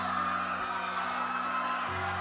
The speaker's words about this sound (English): They scream. But they do not know. God. They scream, but they do not know. Terrible.